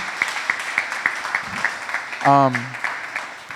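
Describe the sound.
Dense, steady audience applause fills the whole stretch, many hands clapping at once, with a brief voiced call rising above the clapping partway through.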